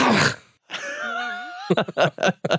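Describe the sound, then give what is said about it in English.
A voice imitates a loud snore: a rough, snorting rasp followed by a drawn-out groaning tone, then a few quick bursts of talking. “I just woke myself up going like that.”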